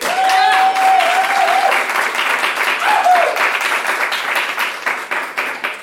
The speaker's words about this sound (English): I would like you to applaud for the person who you feel is the most obsessed with their video game.